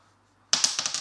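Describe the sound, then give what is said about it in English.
After a brief quiet moment, lightning dice rolled for damage clatter across a table in a sudden burst of quick, sharp clicks that tumble and settle within half a second, fairly loud. “Roll damage, I guess. Oh. These are my lightning dice.”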